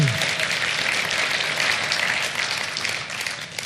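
Steady applause from a crowd, a dense wash of many hands clapping at an even, loud level that tapers slightly toward the end, with no voices standing out.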